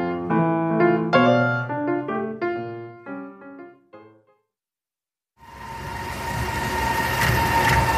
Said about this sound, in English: Brooklyn, New York, South Williamsburg. The JMZ subway runs slower than usual because of quarantine. Still, for a struggling couple and their child, the sound of the elevated subway cars is smoothing, almost swaying.